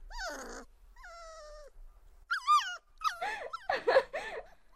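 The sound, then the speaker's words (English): A dog whines in a few high, wavering whimpers, then breaks into several loud yips and barks in quick succession, with no one talking. “It licked me, and it was a dog.”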